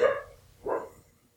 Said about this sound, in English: I'm gonna kill that dog if this is gonna be a thing all day.